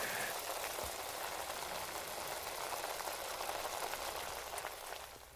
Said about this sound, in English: But, you know, he's cooking the ramen. So we're watching someone cook ramen. If you didn't gather that by the sound of it.